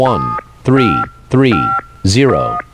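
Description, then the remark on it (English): A synthetic, robotic voice slowly reads out digits of a phone number, four evenly spaced syllables, each overlaid with steady touch-tone beeps, fairly loud. “If you want to give a call, let's see what the robot will give the number slowly.”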